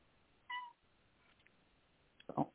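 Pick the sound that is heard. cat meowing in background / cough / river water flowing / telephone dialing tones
cat meowing in background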